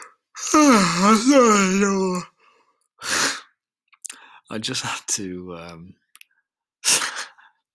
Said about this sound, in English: I just had to abandon the first attempt at doing this because I yawned three times in 3 minutes at the start. And it's not a great start for me that I've just yawned one time in the first minute here.